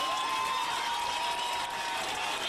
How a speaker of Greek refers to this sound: Θέλετε, δώστε μου ένα χειροκρότημα για αυτή τη φωνή που έρχεται.